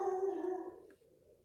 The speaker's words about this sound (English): I hear some dogs barking. Yeah, Chewy.